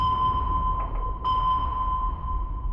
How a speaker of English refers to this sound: That's our sonar emitting a pulse of sound into the water and listening for it to echo back. Because we know how fast sound travels through water, we can use the amount of time it takes to rebound to calculate how far away an object is.